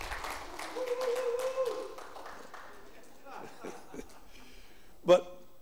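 A short burst of audience applause, many hands clapping at once for about two seconds, with a few chuckles mixed in, then fading into quieter room noise and a sharp thump near the end.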